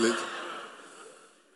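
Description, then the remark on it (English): A person imitates the labored, wheezing breathing of someone with breathing difficulties: one drawn-out raspy, breathy exhale that starts strained and voiced, then trails off softly over a second and a half, fairly quiet. “you know, ma'am, I'm having breathing difficulties.”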